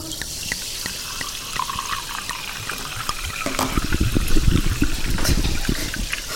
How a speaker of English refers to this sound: Oh my goodness. We got that. That's live sparkling water.